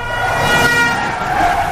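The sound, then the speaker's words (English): A car driven by Tyler Durden drifts into oncoming traffic, its engine roaring while a sustained horn blares over it, loud and continuous for the whole moment, with no voices. “And at the same time, Tyler Durden is drifting that car into oncoming traffic and...”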